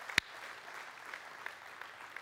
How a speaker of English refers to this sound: We just want to clap for you. We can start that right now. That was incredible.